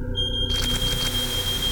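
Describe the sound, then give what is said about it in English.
A building fire alarm blares with a loud, steady high-pitched tone that holds throughout, soon joined by a wash of noisy, hissing background commotion. “Turn that alarm off right now!”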